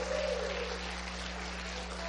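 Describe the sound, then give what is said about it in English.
An audience claps its hands to give God praise, in a steady, dense wash of applause that holds at an even loudness for about two seconds, with no voices and a low hum underneath. “If you believe that way, clap your hands and give God a praise.”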